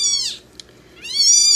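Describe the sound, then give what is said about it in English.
A tiny female kitten of about 145 grams, held in a hand, meows twice, thin, high-pitched cries separated by a short pause, the second call rising and louder. No one speaks. “I mean, the kitten I've got in my hand right now, because this is a podcast, you can't see it.”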